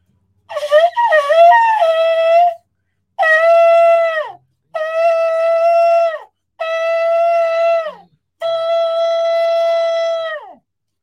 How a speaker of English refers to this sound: So let's blow the shofar. Let's sound the alarm.